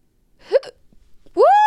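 A sharp hiccup jolts out, followed after a short pause by a louder voiced hiccup that squeaks upward and lingers briefly as a held tone. No talking.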